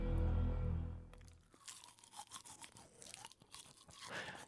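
A toothbrush scrubbing teeth: after a brief low rumble, rapid, uneven scratchy bristle strokes with wet crunchy texture continue for several seconds, fairly loud and with no talking.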